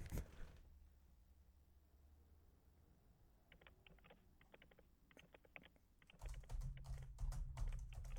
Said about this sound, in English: What's that noise? Hold on for just a moment. Wait, are you typing?